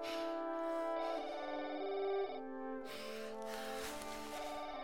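A phone rings with a loud electronic ringtone, sustained synthetic tones shifting pitch for a few seconds before the sound turns busier and more distorted. No one speaks.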